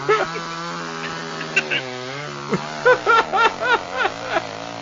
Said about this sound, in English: Yes, because everybody loves to use a nice chainsaw on a pumpkin. Best tradition ever.